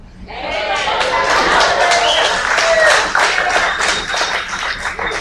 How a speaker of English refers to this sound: And we can clap about that, and I do. I love Chick-fil-A.